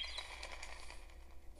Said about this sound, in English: The sound effect of the bird taking off and coming back might be a little annoying.